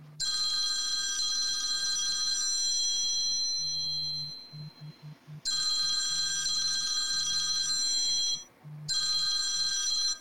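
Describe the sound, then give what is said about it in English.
A telephone rings loudly in repeated bursts, a bright, trilling electronic ring with short pauses between the rings and no one speaking. “Is that the phone again?”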